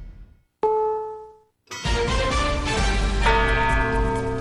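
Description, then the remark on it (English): A single courthouse clock bell strike marking 7 o'clock on WGNS radio, Murfreesboro, rings out with a clear, sustained tone that fades over about a second before loud, dense music cuts in. “Courthouse clock time, 7 o'clock.”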